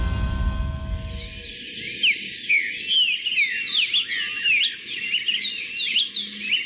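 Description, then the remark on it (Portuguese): Many wild birds, including yellow-chevroned parakeet, streaked flycatcher and riverbank warbler, chirp and whistle together in a busy outdoor chorus in the border region of Brazil, Argentina and Paraguay, overlapping bright calls and trills continuing steadily over a faint background hum, with no one speaking. “Estas são apenas algumas espécies de aves que podem ser encontradas na região de fronteira entre o Brasil, a Argentina e o Paraguai.”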